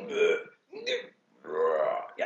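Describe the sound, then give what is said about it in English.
A person vocally imitates vomiting with three loud, guttural retching heaves, the last drawn out longest, ending in a short gulping catch. Throaty and gurgling, with no other talk. “So your classic vomit is that real.”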